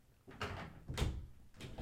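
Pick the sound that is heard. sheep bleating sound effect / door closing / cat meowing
door closing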